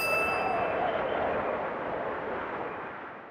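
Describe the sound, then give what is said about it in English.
A single bell ding rings out and slowly fades over a few seconds, its bright metallic shimmer decaying over a broad, hissy wash of sound. No one speaks. “Children, let's make the wind sound after the bell.”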